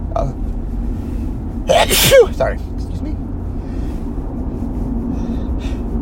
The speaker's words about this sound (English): Double sneeze.